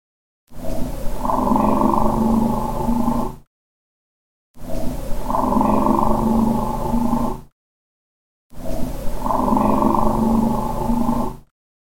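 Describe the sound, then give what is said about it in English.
Steady, low droning car noise, recorded overnight by a recorder left outdoors at Site 7, plays in three identical bursts of about three seconds each, separated by silence, with a rough, breathy texture riding over the rumble. “There's car noise in the background, but to me it sounds like someone whispering, maybe.”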